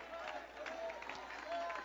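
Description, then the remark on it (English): A crowd claps hands steadily to give God praise at a preacher's call, amid a murmur of voices, a dense wash of applause with no single clap standing out. “I hear hand clapping, but somebody shout.”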